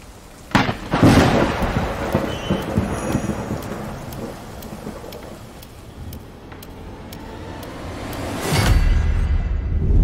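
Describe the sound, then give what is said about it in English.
Steady rain pours throughout while loud thunder cracks and rumbles near the start, then another heavy thunderclap rolls in toward the end. No voices. “You can't freak out every time it rains.”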